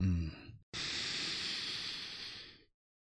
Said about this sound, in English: Sniffing you in through my nose as deeply as I can.